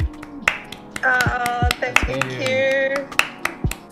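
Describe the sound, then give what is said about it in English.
A small group gives a round of applause on a count of three, a loose, uneven burst of sharp hand claps mixed with cheerful whoops and voices calling out, fairly loud for a few seconds. “And look, usually to end each episode, I usually sort of get us to do a round of applause just to close it out.”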